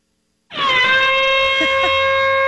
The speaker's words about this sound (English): So first he had a foghorn.